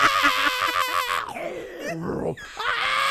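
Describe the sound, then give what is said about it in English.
A voice imitates an enchanted spoon screaming as it is lifted from hot soup toward a beast's mouth. It is a loud, strained, high-pitched shriek that wavers and warbles, breaking into rough squeals before rising again, alone for about three seconds. “So you put a spoon into hot soup and you put it toward your beast mouth, that spoon's screaming at you.”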